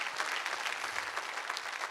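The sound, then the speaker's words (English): Steady audience applause, a dense patter of many hands clapping at an even, moderate loudness for a couple of seconds with no voices over it. “Is that the only applause I'm going to get for that statement?”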